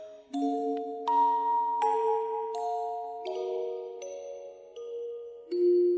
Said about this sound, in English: I want to add the bells. I'm going to add the reverb and the bells, which I feel is like the filter that every music in this piece is going to go through